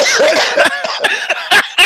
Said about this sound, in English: He's still coughing.